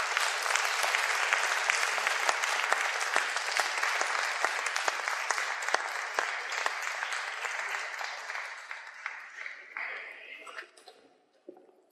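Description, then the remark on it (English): A crowd claps steadily in a dense, sustained round of applause for people leaving the stage to return to their seats, thinning out and fading toward the end. No one speaks over the clapping. “Give them another round of applause, folks.”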